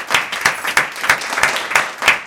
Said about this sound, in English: Clap it up, man. Fire.